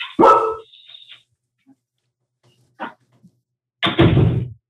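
Puppies bark in short, sharp yips: a loud bark at the start, a faint one midway, then another loud bark near the end, with no talking.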